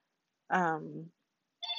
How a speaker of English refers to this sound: Oh my god, I'm so sorry. I thought I unplugged the phone, but I guess it just didn't work.